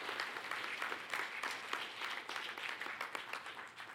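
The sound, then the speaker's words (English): An audience applauds steadily for several seconds, a dense patter of many hands clapping at once with bright, crisp bursts and a fairly even loudness throughout, no voices standing out. “Give them a clap.”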